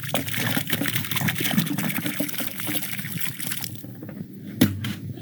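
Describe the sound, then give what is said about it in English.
Water found stored under desert bushes pours and splashes out of a 1-gallon plastic jug in a steady, gurgling stream for several seconds, then tapers off into a few trickles and a sharp final splash. “She is seen dumping out the water she finds stored under desert bushes in 1-gallon plastic jugs.”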